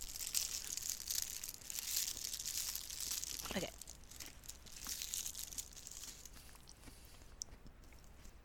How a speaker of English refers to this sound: All right, I'm going to open my snack. You got mad at me last time I pre-opened it, so I'm opening it now.